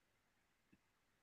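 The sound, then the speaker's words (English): A single sharp, brief click from a computer mouse, standing out against a quiet background hiss with no one speaking. “I'm clicking.”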